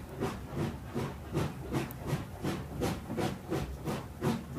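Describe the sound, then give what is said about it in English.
A steam train carrying Rene Maquenhen home in early June 1945 chugs steadily along. Its rhythmic hissing chuffs repeat at a brisk, even pace over a low rumble of wheels on rails, with no voices present. “Today is a day in early June 1945, and Rene Maquenhen is on a train home.”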